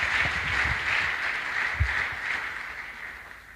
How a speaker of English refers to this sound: Olunaku lukulu nnyo tukubireko Yesu mungalo. This is a great day. Let's clap for Jesus.